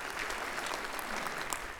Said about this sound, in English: Let's give a round of applause to our little parade of nations over here. Yes, very nice.